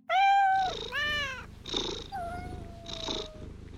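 A cat meows several times in quick succession, the calls rising and falling in pitch, over a steady, rumbling purr.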